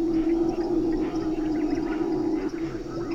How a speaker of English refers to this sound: The howler monkeys at first sounded like big windstorms.